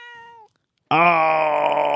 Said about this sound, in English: Oh, wow. That was worth it. That was so good. What a little tiny mew from that precious baby.